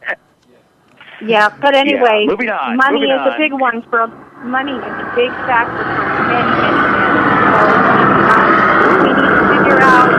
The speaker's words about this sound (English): We just had another helicopter go by, if you could hear it.